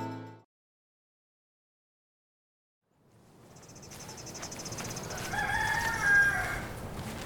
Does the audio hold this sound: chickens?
yes